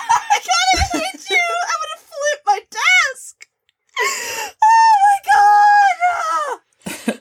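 A woman shrieks excitedly in a string of loud, high-pitched squeals, with a brief pause midway before a second burst of sustained wailing shrieks.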